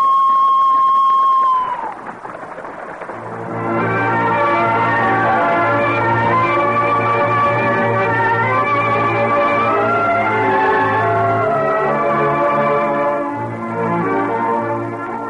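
A loud, steady whistle blast holds one bright pitch for about two seconds, then sags slightly and cuts off. A dense, sustained wash of ringing tones and commotion follows.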